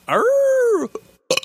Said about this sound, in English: Wait, I think I can muster up a burp. Hold on.